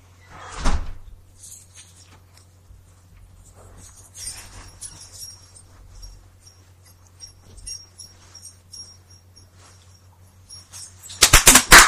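A door opens with a sharp knock near the start as a woman walks in, followed by quiet shuffling and rustling in a hushed setting, then a sudden loud burst of noise right at the end.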